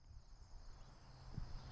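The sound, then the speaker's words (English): Crickets and other critters chirp steadily in the grass on a quiet morning in Rio Town, a neighborhood south of downtown Lansing: a soft continuous high trill with faint low rumbling beneath. No one speaks, and the scene feels quiet and outdoors. “I can hear crickets and critters making noise in the grass,”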